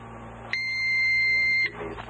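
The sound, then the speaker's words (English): A single sustained electronic beep from a blood glucose meter timer as it reaches 70 seconds, lasting about a second, sharp, over a faint low hum with no talking. “So now this one is about to reach 70 seconds, and it should beep.”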